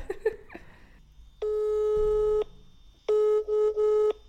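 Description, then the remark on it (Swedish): A telephone ringing tone from an outgoing call: a steady electronic beep held for about a second, a pause, then another tone broken into short pulses, clear with no voices. “Jag ringer Ibbe.”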